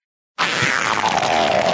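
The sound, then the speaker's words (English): A sudden, very loud fart bursts in after a short silence and holds as a harsh, distorted, blown-out blast that fills the rest of the moment, with no talking. “I love how the farts are maxing out the audio.”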